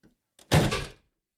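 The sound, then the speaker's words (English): The largest old suitcase from a prop shop slammed shut to mimic a car door, with garbage cans in the background: a faint click, then one loud, heavy thud with a short rattling decay, followed by silence. “Car door. With garbage cans in the background.”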